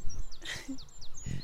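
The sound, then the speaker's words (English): A chiffchaff sings a short run of high, thin notes, about five in a steady, see-sawing rhythm, fairly clear, over a faint low rumble. “It looks like it takes all of its might to chiff chaff, chiff.”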